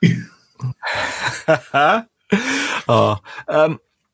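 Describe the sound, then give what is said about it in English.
A voice imitates a creature's rasping hiss and heavy breathing: a loud run of hoarse, hissing exhalations mixed with growly voiced breaths, in several short bursts with brief pauses. “And to be honest, it's this episode now, so it's up to part 4, where I've just written that hissing and breathing is getting right on my tits.”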